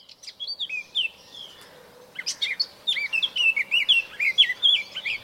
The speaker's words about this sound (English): If you come down from the heavily cultivated fields east of Norwich into the floodplain of the River Yare, you will find yourself surrounded by the melodies and calls of birds.